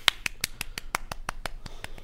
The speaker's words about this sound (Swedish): Du ska få en applåd av mig,